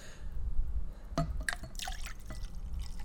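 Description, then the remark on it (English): A drink is poured into a glass: liquid splashes and trickles, with bright dripping and clinking bursts over a low rumble, fairly quiet, lasting a few seconds with no talking. “Keep pouring.”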